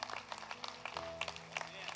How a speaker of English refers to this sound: God bless you. Give him a hand clap. Come on.